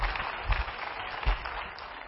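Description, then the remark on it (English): An audience in Lampasas, Texas, applauding with a hand clap of praise for Pastor Chris, a dense, steady wash of many hands clapping at once, with a couple of brief low thumps rising out of it and no voices. “Come on, y'all give Pastor Chris a great big hand clap of praise this morning.”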